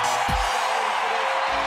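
A basketball arena crowd at an Iowa State game against West Virginia roars and cheers after Tyrese Hunter's right-handed dunk on a run-out, a dense, steady wall of noise that stays loud throughout, with a couple of low thumps underneath and no clear speech.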